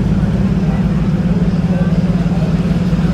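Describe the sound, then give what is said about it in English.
A race car engine on an Aston Martin runs loud during an engine test, holding a steady, throaty low drone with a slight pulsing throb for a few seconds. “TGM's doing a little test for the engine here on their Aston Martin.”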